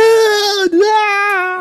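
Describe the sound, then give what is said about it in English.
A voice imitates a 17-year-old boy's high-pitched squeal of fright at a spider, one sustained shrill wail lasting under two seconds, with a brief catch in the middle before it carries on, loud and alone. “Yeah, the high-pitched squeal.”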